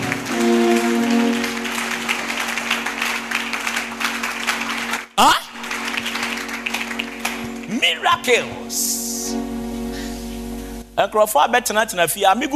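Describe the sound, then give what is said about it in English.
An audience claps unto the Lord together in a steady, dense patter, mixed with singing or sustained musical tones and raised voices, before the clapping fades and speech takes over. “Oh, clap unto the Lord as if you are blessed. Clap unto the Lord.”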